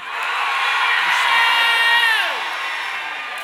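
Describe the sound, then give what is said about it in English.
A large audience screams and cheers together, a dense wall of voices and whoops swelling loudly for a few seconds before easing off slightly, with no individual speech standing out. “Everybody that trusts God, scream right.”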